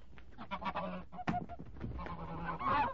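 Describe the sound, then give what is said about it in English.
A big goose honks loudly and repeatedly, harsh agitated calls tumbling over one another, with bursts of wing flapping as it struggles while being made to swallow a stone. No one speaks. “I caught a big fine bird, and, well, after a bit of trouble, I got it to swallow the stone, all right. But it flapped and struggled like anything.”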